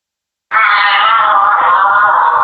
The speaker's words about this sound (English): That's a baby giraffe.